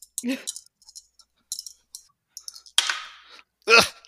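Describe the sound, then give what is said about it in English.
Scattered sharp clicks and clatters of dice tumbling onto a surface as a player rolls them in a game, with a couple of brief louder rattles near the end and a soft breathy sound. “So let me roll for my unquenchable vitality.”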